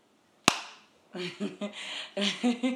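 One sharp, loud hand clap, made at the producer's request, rings out with a quick fading tail, then after a brief pause a person starts talking.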